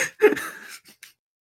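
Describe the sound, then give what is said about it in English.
A dog yawns, a breathy exhale with a thin squeaky whine that slides downward, followed by a couple of short, soft puffs of breath before falling quiet. “I think he was just yawning.”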